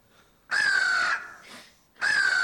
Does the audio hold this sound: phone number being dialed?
no